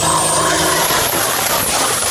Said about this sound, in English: Well, goodness gracious, there is Pontalucky. He's out getting ready for the fields. Oh, yeah, there he's going now. Holy moly on that big tractor.